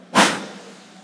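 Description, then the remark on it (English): A person blows one sharp, breathy burst of air into their hands, sounding like a train's whoosh. It starts loud and trails off within about half a second, with no talking. “Somebody made a train noise.”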